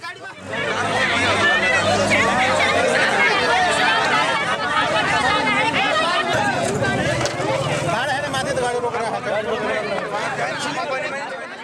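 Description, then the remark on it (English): A dense crowd of about 100 protesters chattering while blocking a road, many overlapping voices forming a steady, loud outdoor babble that stays continuous throughout. “I followed two police in riot gear along the lineup of buses and trucks to a crowd of about 100 people blocking the road.”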